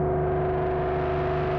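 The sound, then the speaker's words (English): A steady, distorted reverb drone hums with sustained feedback tones ringing over a gritty wash of noise, holding at an even, fairly loud level throughout without any voices. “We could listen to this distorted.”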